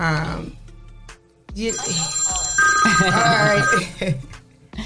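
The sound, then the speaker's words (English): A telephone rings with a call to the Rise and Grind Morning Show, a steady, bright electronic trill lasting a couple of seconds, fairly loud, while voices talk underneath and around it. “Who we got on the line? Oh, come on. Let me see that phone.”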